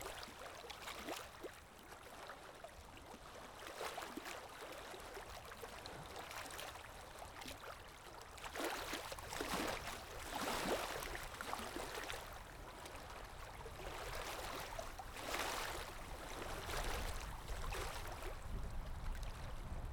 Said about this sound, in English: What you find is that when you're thinking about the waves, you don't think of anything else. And you don't think of your worries. So put your attention back on the waves. Just listen. Listen, really listen to them.